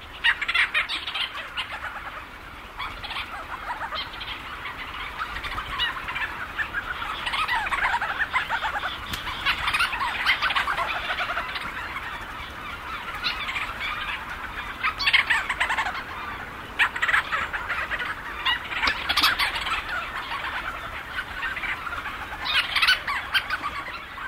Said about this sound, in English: We leave you this week among seabirds. Thousands of Leach's storm petrels circle overhead, swooping and calling into the night.